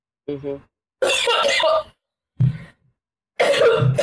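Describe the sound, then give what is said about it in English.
Someone makes several harsh, strained coughing and throat-clearing bursts with short pauses between them, a dry, unproductive cough that never seems to clear. “It's like, it won't go deep enough.”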